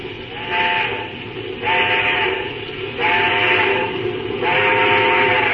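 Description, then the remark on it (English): A steam locomotive whistle, blown at a red signal light, sounds four loud, evenly spaced blasts, each about a second long, over a steady low rumble, with no talking. “Sure, I'll give him the whistle.”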